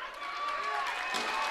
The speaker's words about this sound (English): The applause is for the appreciation by the South Bend John Adams Eagle fans